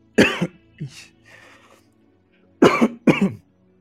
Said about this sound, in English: I don't know why I'm coughing so much.